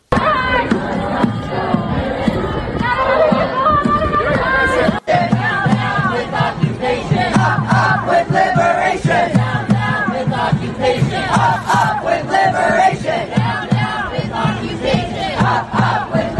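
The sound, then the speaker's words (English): A dense crowd of protesters blocking the street shouts and chants together, a loud continuous roar of many voices with rhythmic cries rising over a steady low hum throughout. “Look at these morons blocking the street.”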